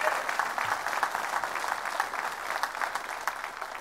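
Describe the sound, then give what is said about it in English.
A church audience claps steadily together as a clap offering to the Lord, a dense, continuous wash of many hands applauding at moderate volume throughout, with no speech over it. “If you do, give the Lord a great big clap offering.”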